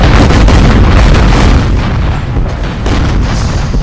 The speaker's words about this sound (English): He sends his fleet of 5 battleships plus 50 cruisers and destroyers across the head of the Russian line, allowing each one in turn to open up with the full strength of their broadside guns, erupting in a hail of cannon fire.